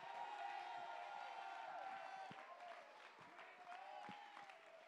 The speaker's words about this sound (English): Somebody clap your hands. Somebody give him praise. Somebody shout. Somebody shout with a voice of triumph.